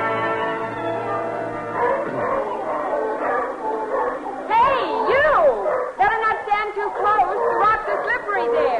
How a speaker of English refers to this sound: Can't hear a word you're saying. Seals are making too much noise.